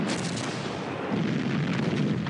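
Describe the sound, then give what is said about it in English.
A dense, continuous din of a battle lasting into the night, rapid gunfire with red tracer rounds crackling over a deep artillery rumble, loud and unbroken from start to finish with no voices. “The fighting lasts into the night, red tracer rounds lighting the darkness in a hypnotizing display more dazzling than any fireworks.”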